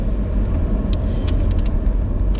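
Windscreen wipers running inside a moving car, giving several brief, irregular high-pitched scrapes and squeaks over a loud, steady low engine and road rumble.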